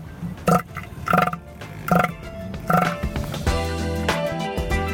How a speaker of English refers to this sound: You'll be pleased to know that's all the grunting seals for this week.